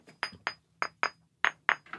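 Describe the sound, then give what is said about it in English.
A hammer taps a rock seven times in an uneven rhythm, some blows coming in quick pairs, to test its soundness by listening to the harmonics, a dull thud would mean a crack. Each strike is sharp and bright with a short high ringing tone, and no one speaks. “I see you tapping. What are you tapping? Just listening to the harmonics?”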